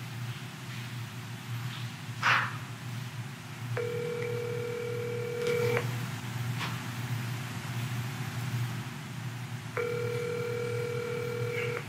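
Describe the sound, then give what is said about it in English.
A phone call rings out on the line: two steady electronic ringback tones, each about two seconds long with a long pause between, heard over a low, constant rumble like a running car. “Y'all get the phone?”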